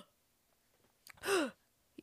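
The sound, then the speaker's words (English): A single sharp, loud gasping breath with a strained, throaty edge from someone choking on water, surrounded by near silence and a faint click afterward. “I was choking on water.”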